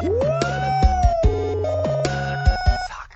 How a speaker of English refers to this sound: Let's play the siren for the first time callers. Here we go.